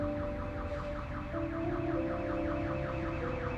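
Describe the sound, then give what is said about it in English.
A car alarm blares continuously, its repeating whooping tones cycling rapidly over steady tonal bands, loud throughout with no voices. “I can't hear you over that car alarm.”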